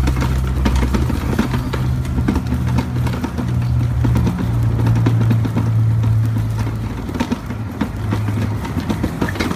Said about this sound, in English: Finally, listen to the sounds of my wheelchair driving on cobblestones in Sarria.